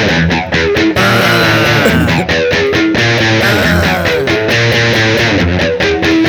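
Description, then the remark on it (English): A loud, heavily distorted electric guitar plays a choppy riff of bending, sliding notes, with short rhythmic breaks between phrases and no voices over it. “Hit me with a riff.”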